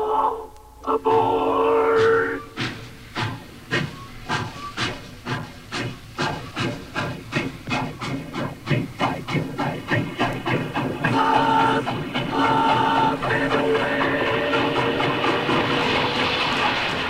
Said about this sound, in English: The vocoder modulates one sound with another sound as I'm now being transformed into a talking organ. Or you can be a wah-wah guitar. Or how about a train that talks?